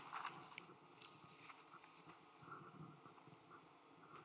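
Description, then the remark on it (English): Soft rustling of paper notes as sheets are shuffled and handled, with faint crinkling and scattered small crackles over a few seconds, no voices. “Sorry, let me just shuffle my notes around.”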